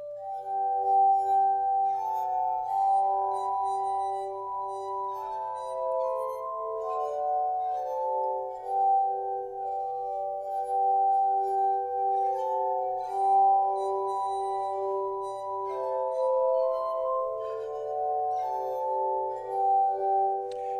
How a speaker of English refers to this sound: these are glass bowls, essentially, that are turned on their side, connected with a spindle that runs through all of them.